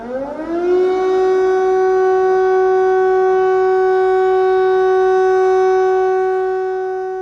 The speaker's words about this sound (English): So they have a very good system, like an air raid alert system. Just about everybody has an app on their phone, and the sirens also sound out throughout whatever city or small town that you may be in.